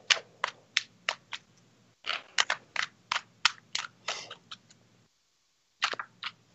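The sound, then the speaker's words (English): Tarot cards being shuffled, a steady run of crisp, papery slaps and flicks at about two per second, with short pauses and a faint low hum underneath. Nobody speaks. “You gotta shuffle until you're done.”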